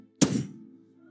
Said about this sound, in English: When I walked into the building, I heard the following sound. This is what I heard. I heard the sound of a door that slams.